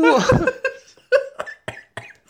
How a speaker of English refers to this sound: What? Oh my god, that made me cough from laughter.